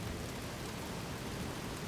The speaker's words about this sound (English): And maybe the rain slows down just slightly like it did up on top of the mountain.